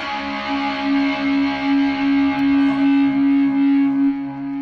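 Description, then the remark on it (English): A heavily distorted electric guitar, played through a distortion pedal during a level check, holds a sustained, buzzing note with a slight pulsing swell, loud, ringing out alone for several seconds before cutting off. “I told him I wasn't even going to use my distortion pedal. So let's just make sure the levels are still good.”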